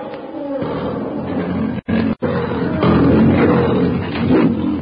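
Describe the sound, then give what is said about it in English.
A huge lion growls loudly as it gathers itself to charge, a deep, rumbling snarl that keeps going for several seconds, broken only by a brief pause partway through. “With a savage growl, the huge king of beasts gathers his great tawny body for the charge.”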